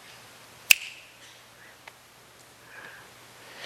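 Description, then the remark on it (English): A single crisp finger snap rings out sharply in near silence, followed later by a much fainter click and soft hissy background noise. “So almost two of us are gone every time I snap my fingers.”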